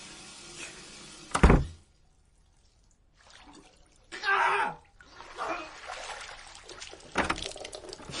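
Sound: water splashing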